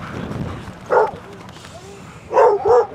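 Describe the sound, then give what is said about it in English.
Sled dogs bark three times as they return from an outing of about an hour and a half, one sharp bark followed by a quick pair near the end, fairly loud over a low, steady outdoor rumble, with no talking. “Coast and the dogs return after about an hour and a half. Oh, they're here.”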